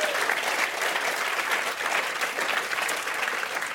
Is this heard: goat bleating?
no